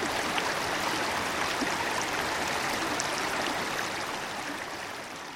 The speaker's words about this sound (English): We follow the flow down the mountain, where the trickle comes together with another and another. Soon it's become a full-fledged mountain stream, home to rare speckled trout.